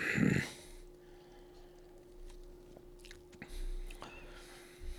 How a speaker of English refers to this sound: Huh. It's like if somebody took a Rice Krispie treat, blended it up into liquid, and mixed it with Pepsi. There is a, ooh, that is a marshmallowy aftertaste. I'm gonna take one more sip